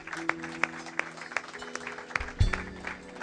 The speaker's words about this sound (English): Give God a hand of clap.